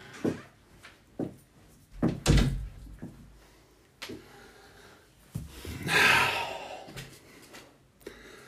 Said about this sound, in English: Dude, you can't bang on the door. That's not right.